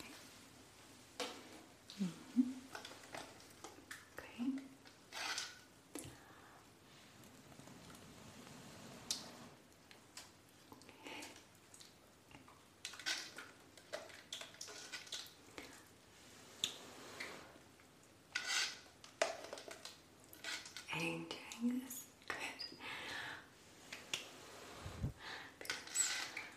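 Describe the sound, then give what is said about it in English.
Bubbles being blown into bath water: a steady run of soft, wet pops and clicks at an irregular pace, fairly quiet, with occasional deeper gurgles and no talking. “And so as you're going to lean back and relax, I'm going to blow some bubbles in here too.”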